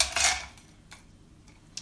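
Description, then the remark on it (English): Ice cubes tumble into a balloon glass while a cocktail is being prepared, with a bright, rattling clatter, followed by a few sparse, high clinks as they settle. No one speaks. “First of all, you're going to get a bunch of ice. And you're going to pour that into your balloon glass.”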